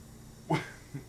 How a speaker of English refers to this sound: I think dog just howled when I did that.